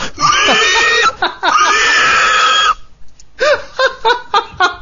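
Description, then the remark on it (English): A person imitates a pig with two long, loud, high squeals, followed by a burst of short squealing snorts in quick succession. “Unknown talents, I can squeal like a pig”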